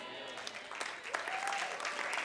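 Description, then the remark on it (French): Audience applause, a dense crackle of many hands clapping that thickens after the first second, with a faint voice or whistle-like tone briefly rising through the noise. “You're not clapping well.”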